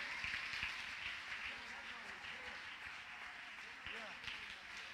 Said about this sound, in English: come on, clap your hands and praise Him for His miracle power.